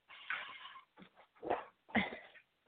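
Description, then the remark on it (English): A cat meows several times in a row, one long drawn-out cry followed by a few shorter, insistent meows, with no talking over them. “Hi, Kitty.”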